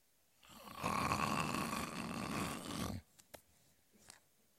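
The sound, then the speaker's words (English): A voice imitates the biblical Peter snoring while asleep in prison, in one long, rasping, rattling snore lasting a couple of seconds, followed by a few faint clicks and small noises as it fades out. “They hadn't invented CPAPs back then. He was snoring.”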